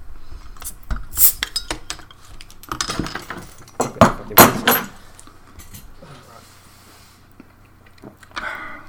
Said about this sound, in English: Okay, I'm just going to open a beer quickly before we start. Yeah, I will do. The Cobra you sent me.